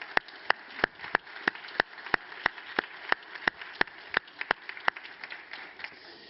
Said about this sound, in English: And so I want to give God a round of applause. So if you would join me in that.